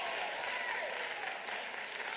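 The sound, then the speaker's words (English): An audience applauds, a dense, steady wash of many hands clapping at once, loud and unbroken throughout with no individual claps standing out. “If nobody else clap, can I get the saints are clapping?”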